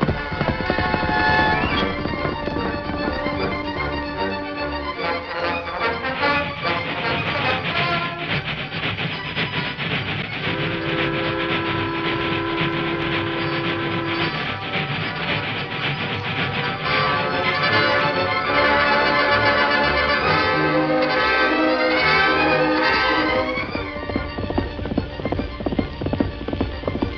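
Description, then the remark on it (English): Rapid, steady galloping horse hoofbeats drum along without pause for nearly half a minute, loud, blended with sustained tonal sounds and no talking. “Come on, Silver. Faster, big fellow. We've got to stop that train.”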